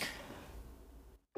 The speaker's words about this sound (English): It was just like a toilet, like a classic intro of, hold on, let me sneeze real quick.